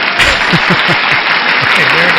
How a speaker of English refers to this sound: Hold for the applause track I'm going to put in.